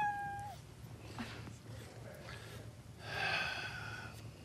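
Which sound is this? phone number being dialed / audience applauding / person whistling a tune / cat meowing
cat meowing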